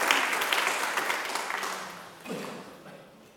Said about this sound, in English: So give them a round of applause as they sit back.